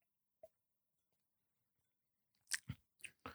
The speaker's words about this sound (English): All right. Go ahead and take a sip. Cheers.